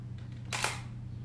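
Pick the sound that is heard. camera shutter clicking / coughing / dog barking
camera shutter clicking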